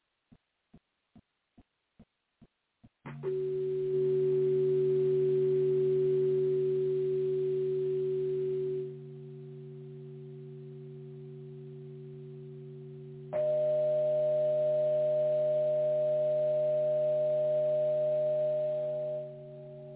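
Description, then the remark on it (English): A few sharp clicks, then sustained electronic tones, in golden ratio proportion to each other and sent out as a signal toward Oumuamua, hum loudly, switching to a second, higher pitch after a brief drop, alternating steady tones with no voices. “So anyway, those tones, they are one golden ratio proportion to each other.”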